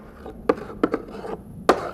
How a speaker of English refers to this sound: Whatever is making that scratching sound is right behind this door. Should we open it?